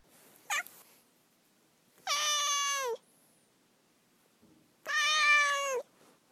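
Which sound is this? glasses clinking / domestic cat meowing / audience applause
domestic cat meowing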